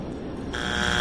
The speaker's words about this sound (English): At least we learned that you can hit the buzzer. It's just a little quiet. Yeah, okay. It's quieter, though.